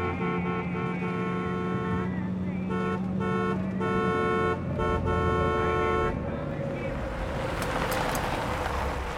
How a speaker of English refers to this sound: An unnamed woman, played by the warm and intuitive Ione Skye, glances in her rearview reflexively before an aggressive honking horn captures her attention.